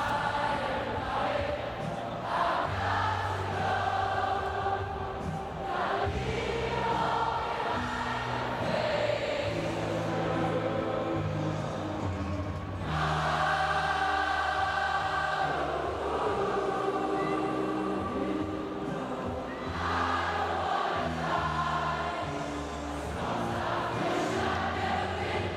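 A concert crowd sings along in unison with a live band, their massed voices blending with sustained melodic lines over a steady beat, loud and continuous throughout.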